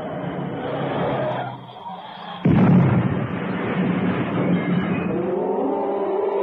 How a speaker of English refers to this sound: car had swerved into the rock face